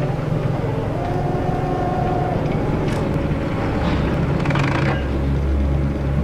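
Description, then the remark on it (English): A truck engine rumbles loudly and steadily as the truck is driven, a deep continuous drone with brief rougher surges of higher noise partway through, and no one speaking. “He's driving a truck in the air.”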